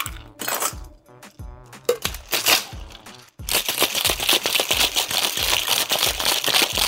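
Ice cubes clatter into a cocktail glass holding slapped mint leaves, with sharp clinks and rattles, followed by a dense, continuous crunching and crackling of ice settling and being crushed, fairly loud with no talking.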